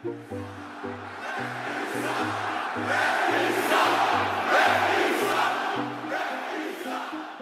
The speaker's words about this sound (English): Does the sound of those 18,000 people screaming at you or booing you, does it sound any different than it sounded when you started in 1991? Yeah, there's a little more anger involved.